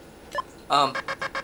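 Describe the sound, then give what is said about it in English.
A cartoonish bird-like enemy hitting the player in the home port of a follow-up to Donkey Kong: a tiny chirp, then a loud, harsh goose-like honk trailing into four quick, softer stuttering squawks. “That weird, potato chip clip thing that I guess is supposed to be a bird just got me.”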